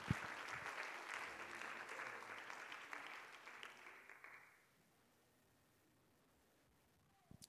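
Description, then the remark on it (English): A seated church audience claps their hands to the Lord during an evening service, dense, sustained applause that carries for several seconds, then fades out quickly, leaving near silence with a couple of faint knocks at the end. “Would you clap your hands to the Lord one more time as you're seated tonight?”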